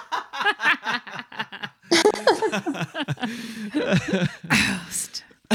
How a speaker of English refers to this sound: You sound like Nuggy coughing.